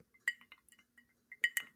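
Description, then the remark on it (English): Bright glass clinks ring out in a few quick, irregular taps, high and sharp, as a glass of Christmas bourbon is handled, with no one speaking. “got my Christmas bourbon.”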